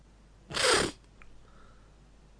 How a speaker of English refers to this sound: Okay, and then we've got sniff number two. And finally, sniff number three.